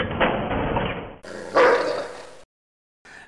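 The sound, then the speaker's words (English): A dog barks in a few sharp, loud bursts, with a brief gap of silence before one last short bark; it has the dry, slightly muffled quality of a game sound effect. “you'd hear the guy yell at you in German on the other side, and the dog barking, and Yes, it's just the those dog the sound.”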